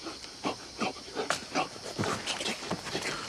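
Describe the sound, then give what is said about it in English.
Dogs pant in quick, rhythmic bursts of breath mixed with soft whimpers, fairly quiet, with no voices over them. “You have led dogs to me.”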